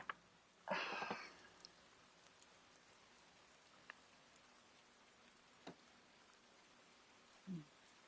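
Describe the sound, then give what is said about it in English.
Heavy rain hisses steadily in the background with scattered soft drips and taps, broken early on by a short, louder burst that sounds like a cough and later by a low thud. “Man, God, do you hear that rain? God, it's really coming down.”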